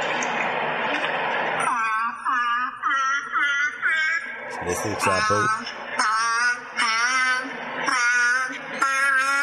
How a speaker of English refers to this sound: So that first bit was the tune being played for the seal, and then that was the seal repeating it. And that'll continue throughout this clip.